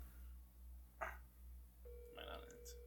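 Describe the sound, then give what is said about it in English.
An outgoing phone call's ringing tone starts partway through, a steady electronic tone that continues to the end over a low rhythmic hum, with a brief noisy burst just before it. “I'll fucking call him.”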